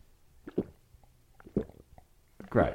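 Three soft, throaty gulps come at roughly one-second intervals, each a brief low swallowing burst, the last one a bit louder, over a quiet background as someone drinks water.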